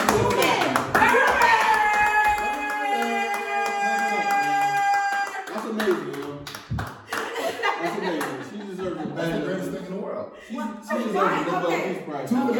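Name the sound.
clapping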